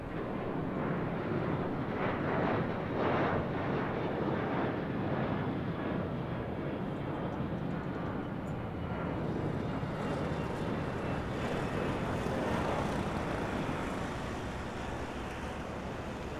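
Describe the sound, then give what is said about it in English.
A steady, loud airplane engine roar drones on without a break, a dense rushing hum that stays at an even level throughout, with no voices. “I think I'll just, hop on that plane and see you guys on the other side.”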